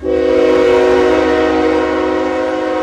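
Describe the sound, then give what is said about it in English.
A freight train's horn blares in one long, steady chord, loud, holding for about three seconds with a low rumble of the train beneath it and no voices. “About 10 oil trains with 100 cars each leave North Dakota every single day, passing through big cities like Seattle, Denver, and Minneapolis on their way to refineries on the coasts.”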